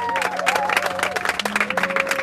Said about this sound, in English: Please clap for them. Clap for them.